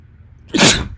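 A single sharp human sneeze bursts out suddenly after a quiet moment, loud, with a hissy, explosive release that fades quickly.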